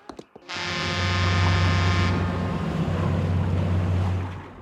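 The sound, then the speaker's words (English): A boat's engine drones steadily while water rushes and churns around it, loud and continuous for several seconds with no voices; the boat is sinking. “Oh no, our boat is sinking.”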